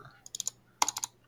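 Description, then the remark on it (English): Two quick bursts of keyboard clicks, a handful of crisp keystrokes each, typed with a short pause between groups and no talking. “Shut up again, except for your methodic clicking.”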